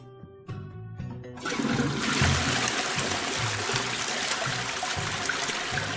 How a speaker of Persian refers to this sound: اجازه بده اول سیفونو بکشم.